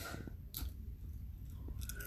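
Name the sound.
crunching barbecue potato chips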